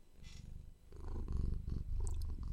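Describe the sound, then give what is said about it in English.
A cat purrs close to the microphone, a steady low rumbling vibration with a rhythmic pulse that swells louder partway through, with no talking over it. “You should turn my gain up during this part because she is up next to the microphone purring.”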